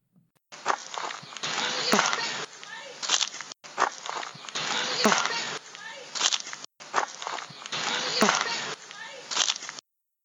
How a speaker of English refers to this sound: Also, you can hear the footsteps of one of the members walking in the autumn leaves.